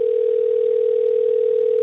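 A telephone dial tone as a phone call is placed hums as one steady, unbroken low-pitched note for the whole stretch, with a thin, band-limited phone-line quality and no voices.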